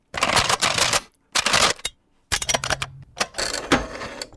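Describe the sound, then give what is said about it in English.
Buttons on a control desk are hit rapidly, all of them, to try a code, making dense flurries of sharp plastic clicks in three or four loud bursts separated by brief pauses, with no voices. “Maybe you've got to hit all the buttons.”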